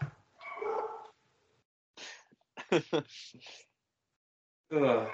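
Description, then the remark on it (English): A dog barks in a handful of short, sharp bursts spread across a few seconds, with brief pauses between them, moderately loud. “And the dog greets.”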